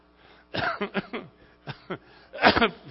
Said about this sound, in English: Fifth year cough. Holy cow, why don't you get yourself a couple of aspirin? That cough sounds terrible.